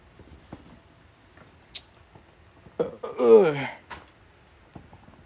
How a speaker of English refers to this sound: Shit, I even burp on my podcast, but... pretty funny.